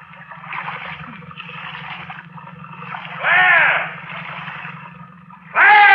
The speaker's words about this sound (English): Stop paddling.